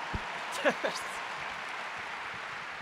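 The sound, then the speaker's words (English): An audience in Lisbon applauds at the mention of an Emmy won for a television show, a dense wash of clapping that holds at an even level throughout, with a brief raised voice cutting through near the start. “That's why we were stoked to win the Emmy, because I was like, one day I'm going to be in Lisbon and that'll be when they applaud when I mention the Emmy.”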